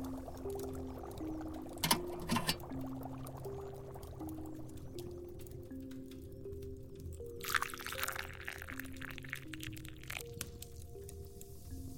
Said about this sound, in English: The potion should now seem to be a golden color, similar to raw honey. Let's pour a cup.